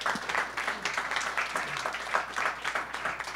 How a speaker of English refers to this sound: So big round of applause for Akaya.